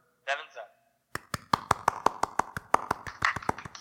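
hand clapping

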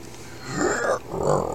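belch

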